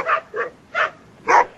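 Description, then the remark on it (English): Four sharp dog barks ring out in an irregular sequence, each short and punchy, the last one loudest, with no talking. “The dogs and the cats are getting out of control.”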